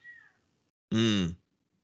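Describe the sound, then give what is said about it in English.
A female cat downstairs meows loudly: a faint, short falling cry first, then a harsh, drawn-out yowl lasting about half a second before silence. “Do you hear the cat screaming?”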